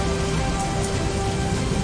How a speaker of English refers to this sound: The ship began to rock back and forth, and it woke Jack up. And after Jack woke up, he realized there was a great wind on the sea, a great storm. Such a great storm that the ship was about to break up.